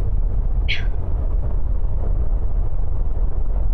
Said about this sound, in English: The storm's hit, and I think we're going through the worst of it. The howling outside. It almost sounds like some sort of animal.